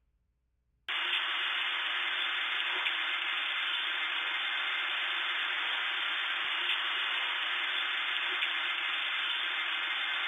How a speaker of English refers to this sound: What was waiting for me wasn't the tones or synthesized voice of a spy station, but something that sent a chill down my spine. Deep in the static, among the white noise. Let me play some of the recording from that night.